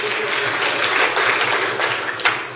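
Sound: audience applause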